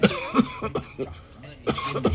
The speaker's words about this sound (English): Hold on, let me cough for a second.